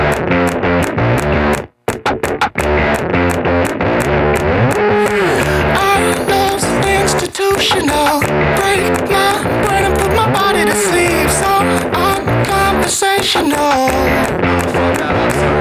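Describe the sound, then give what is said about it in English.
A loud, energetic rock song, the opening track of an album, with distorted guitars and a driving beat, sharp hand claps punctuating the rhythm, and a brief dropout near the start before the full band kicks back in. “Just blatant hand clapping song.”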